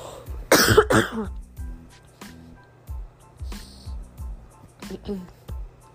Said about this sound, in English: Sorry. Coughing a lot now. Sorry. I guess I'm getting a little bit sick.